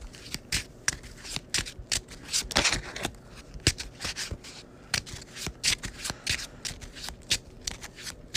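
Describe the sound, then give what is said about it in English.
A deck of game cards being shuffled back together during a card game, a rapid flurry of crisp riffling snaps and soft slaps repeating steadily for several seconds with no voices. “So let's go and grab the Enchanted Blade and shuffle everything back.”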